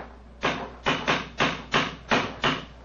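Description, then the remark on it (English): A cane strikes a stone bridge parapet seven times in a quick, slightly uneven series of hard, sharp knocks, fairly loud, with no voices. “It's a hard knock. And in a curious place, too.”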